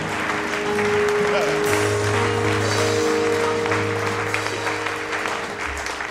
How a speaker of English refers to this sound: Give the Lord a clap. Shout amen. Give the Lord one more clap. Clap like a helper. Clap. A helper.